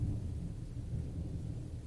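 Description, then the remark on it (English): Low, rumbling thunder rolls continuously beneath a steady wash of rain, a deep and sustained storm sound with no voices present. “I seem to have found myself stranded on this road, and I fear, with the coming storm, I'll either be washed away or frozen to the bone.”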